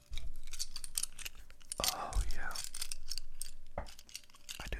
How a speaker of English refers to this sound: Did you know if I crunch Legos in my hands, it's ASMR?